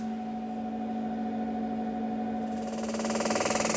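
An M-Cella electromagnetic pelvic floor treatment chair at a clinic, recorded on a phone during a treatment, gives off a steady electrical hum, then partway through breaks into a loud, rapid pulsing buzz with a rattling quality, with no voices.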